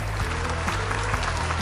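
Steady audience applause, a dense wash of many hands clapping at an even, sustained level throughout, with a low hum running underneath and no talking.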